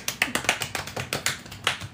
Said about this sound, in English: We can put some claps on here and start clapping.